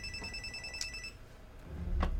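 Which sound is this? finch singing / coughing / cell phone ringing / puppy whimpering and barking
cell phone ringing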